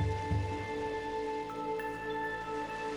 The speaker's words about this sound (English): And as you listen to the calming sound of the waves, you feel a gentle warm breeze against your skin and notice the soft sand beneath your toes.